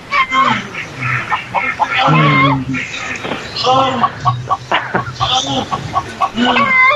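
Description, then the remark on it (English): Several chickens cluck and chatter, a steady stream of short, overlapping calls that keeps up without pause, fairly loud throughout. “Is that a chicken? Are those chickens?”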